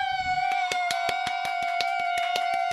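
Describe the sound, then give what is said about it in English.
Two people clap together in a quick, steady rhythm, about a dozen sharp claps over a few seconds, with a continuous high-pitched tone sustained underneath. “We had two people clapping that time.”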